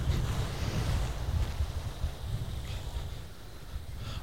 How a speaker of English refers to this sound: I presume that you can hear the waves crashing here on the sand.